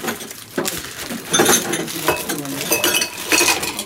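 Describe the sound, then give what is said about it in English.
Several cocktail glasses clink and tap against a hard surface as they are set out, in a quick, irregular series, bright, with soft murmurs of talk in the background. “Okay, I do need one more glass.”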